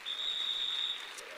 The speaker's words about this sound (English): Come on, let us give many overcomers a hand of applause this morning.